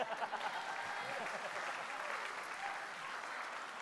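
A crowd applauds steadily, many hands clapping in a dense, continuous wash that holds at an even, moderate loudness for a few seconds.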